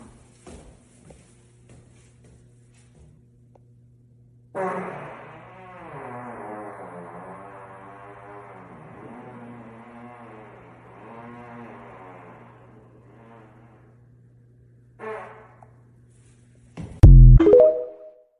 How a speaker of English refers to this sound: So I was like, "Ladies and gentlemen, stairwell fart day 76." Yeah, baby.